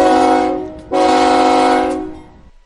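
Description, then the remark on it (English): A loud train horn blasts twice, a brief blast followed by a longer sustained one, with a rich harmonic tone over low rumble, then cuts off abruptly. “He sent me the live sound of his train sound.”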